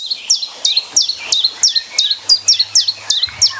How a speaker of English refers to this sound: Zollinger recorded a bird called a chiff-chaff at her home